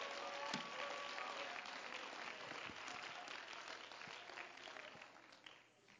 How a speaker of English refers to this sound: Oh, come on. Let's clap our hands again to the Lord.